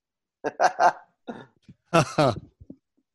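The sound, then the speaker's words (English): A loose Carolina dog barks in a quick run of sharp, harmonic barks, pauses, then lets out a few more, fairly loud, with no one talking. “Oh, somebody's dog. Somebody's dog is out.”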